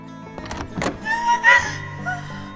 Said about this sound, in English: And Eliza opens the door.